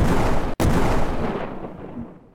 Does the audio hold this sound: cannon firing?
yes